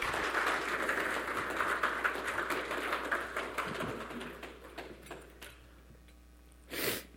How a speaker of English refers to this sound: Well, thank you guys so much. Please give them a round of applause for their honesty and vulnerability.